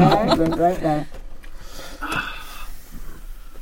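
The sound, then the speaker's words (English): A woman's single loud, throaty burp lasting about a second, low-pitched and buzzing, followed by quiet murmuring background noise. “My wife burped.”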